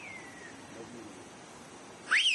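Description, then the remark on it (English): Turkish whistled language signals: a village mayor whistles a message across a valley, inviting someone to break the fast that evening. A faint whistle glides downward at the start, then after a quiet pause a loud, piercing whistle sweeps sharply up and down near the end. No one speaks. “in Turkey there's an ancient whistling language that allows villagers to communicate across valleys and mountains up to 5 kilometers”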